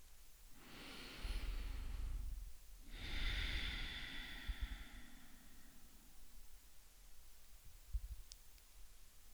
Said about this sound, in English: We'll meet ourselves without any other external noise. But hear our bodies breathing.